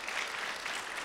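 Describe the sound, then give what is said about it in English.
Steady applause from an audience giving God a round of applause, a dense wash of many hands clapping at once, sustained and even throughout without any voices standing out. “Why don't we give God a round of applause?”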